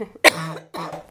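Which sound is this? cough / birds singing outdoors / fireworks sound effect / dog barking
cough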